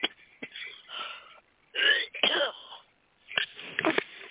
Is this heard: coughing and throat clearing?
yes